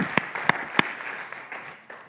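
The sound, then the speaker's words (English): An audience claps for God to celebrate the semester, in a steady wash of applause, with a few sharp, louder claps standing out early on before the clapping thins and fades toward the end. “So let's give God a clap for that, too.”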